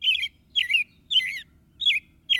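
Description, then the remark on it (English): A robin sings clear, warbling phrases, about five short bursts in quick succession with brief pauses between, distinct over a faint low background rumble. “So over the years, you've probably had many different sets of robins in your yard, even if it looks as if the same pair of robins has returned.”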